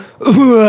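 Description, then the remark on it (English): A single loud fake cough from one voice, a brief rough burst that slides straight into a sustained, steady voiced tone, a pretended cough and yawn done at the same time while sitting down. “I did the classic move where I was sitting down and I pretended to cough and I pretended to yawn at the same time.”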